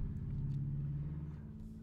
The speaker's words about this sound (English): Motorbike outside.